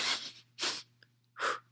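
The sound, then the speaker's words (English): A voice imitates sniffing, acting out Mulder leaning in to smell someone, with three sharp, breathy inhalations, two quick ones and then a third after a short pause, with faint clicks in between and no words. “Yeah, he's like, I'll get to sniffing.”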